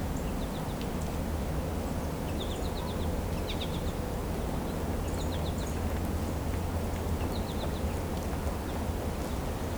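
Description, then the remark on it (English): Faint calls of several American goldfinches, downy and red-bellied woodpeckers, and a Carolina wren come in brief clusters of quick high chirps every couple of seconds over a steady low rumble of outdoor background noise. “Several American goldfinches here. There's also downy woodpecker, red-belly woodpecker, Carolina wren.”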